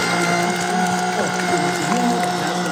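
A baby formula machine whirs steadily as it mixes a bottle and removes the air bubbles, a continuous mechanical hum with a faint gear-like rattling texture and shifting tones, with no voices.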